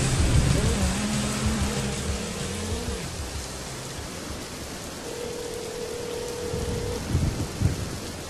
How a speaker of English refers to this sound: Dude, it's raining.